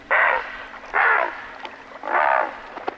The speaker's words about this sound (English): During fall and winter, they defend the areas where they feed as adamantly as other birds defend their nesting territories in spring. The herons challenge and scare away intruders, including other great blue herons, by sounding this call.